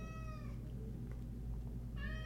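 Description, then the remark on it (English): A male cat meows loudly outside in two drawn-out, harmonic calls separated by a short pause, heard over a steady low hum with no one talking. “Sorry, I just lost my train of thought because my annoying-ass cat is meowing his face off outside.”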